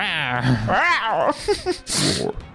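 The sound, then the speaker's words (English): A person voicing a Minotaur's scream during a tabletop game imitates a feeble lion cub roar, like Simba from The Lion King trying to roar for the first time: a few strained, rising-and-falling vocal growls and squeaks lasting a couple of seconds. “If you were to describe it, I don't know that we're probably not supposed to know about Lion King, but it's like Simba trying to roar for the first time.”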